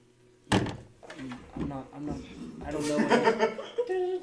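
A door thuds shut with a sharp, heavy knock, followed by people chuckling and murmuring for the next few seconds.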